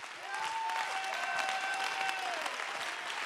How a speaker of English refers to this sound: This is that kind of a church. This is that kind of a church. Come on, clap your hands with me with some boldness and some strength.